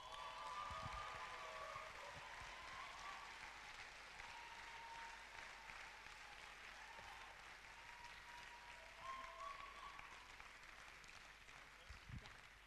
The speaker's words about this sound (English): So why don't we honor these guys by giving them a round of applause, shall we?